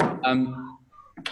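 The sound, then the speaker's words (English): A door swings shut with a solid thud, followed by a brief tonal ring and another short knock of movement at the end. “Just shut the door. My mum's back from shopping.”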